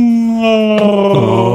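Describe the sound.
A person with water in their mouth lets out a loud, Wookiee-like howl, a strained, gargly voiced wail held steady before dropping in pitch in two abrupt steps, with no words spoken.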